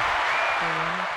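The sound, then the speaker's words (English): A short burst of steady clapping, like a crowd applauding, dense and fairly loud throughout, with a brief low hum or voice-like tone in the second half. “You get. Yeah. Round of applause.”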